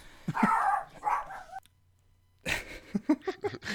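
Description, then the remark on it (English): A dog barks in two rapid clusters of sharp, yappy barks with a brief silent gap between them, loud with no one talking. “Dog's pissed.”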